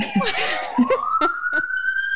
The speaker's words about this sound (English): Sorry if you're hearing like sirens or anything. I'm by my window, but I live in Brooklyn, like right on this like busy street.